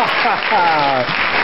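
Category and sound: crowd, applause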